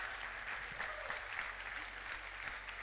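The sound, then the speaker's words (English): A crowd claps steadily, the dense patter holding an even loudness for a few seconds, with no voices rising above it. “Clap your hands and shout, supernaturally.”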